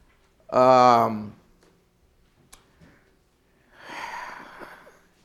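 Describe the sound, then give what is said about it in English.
A loud, throaty cough bursts out during a sermon, then after a short pause comes a softer, breathy, rasping follow-up cough. “I mean, I usually don't cough in a sermon, but I had to let that one out.”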